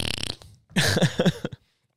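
A wet, sputtering diarrhea fart: a brief hissy burst, then a longer rippling stretch of several quick blats, fairly loud, with no talking over it.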